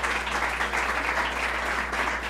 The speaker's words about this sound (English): Let's give the governor a round of applause.